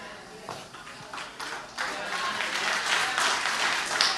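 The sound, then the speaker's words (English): Scattered claps from an audience, a few isolated hand claps at first that thicken into thin, uneven applause partway through, crisp and moderately loud without building to a full ovation. “Like five claps and a half of amen, huh?”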